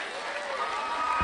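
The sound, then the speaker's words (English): A crowd applauds at the end of a speech that closes with "God save the Queen", in a steady, dense wash of clapping that holds at an even loudness for the whole short stretch, with no clear voices standing out. “And they all clap.”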